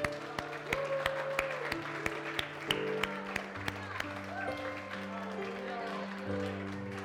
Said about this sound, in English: I want to pray with you. Give them a round of applause as they come.